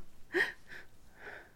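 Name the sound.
sniffing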